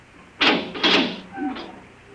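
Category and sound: household object, door being opened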